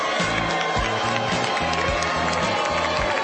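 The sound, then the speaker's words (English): A large crowd at Trump's victory speech in South Carolina boos Lindsey Graham, roaring loudly and steadily. Low, drawn-out booing swells and breaks in repeated waves beneath the dense noise of many voices. “Yeah, that's Lindsey Graham getting booed at Trump's victory speech in South Carolina.”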